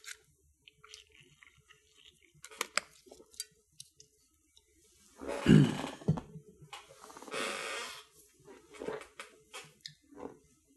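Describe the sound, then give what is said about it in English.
A person drinks water: scattered small clicks and handling taps, then a louder burst of gulping and swallowing, another noisy sip, and a few soft mouth sounds afterward. No one speaks. “I'm just going to have a little brief drink of water after continual reading like that.”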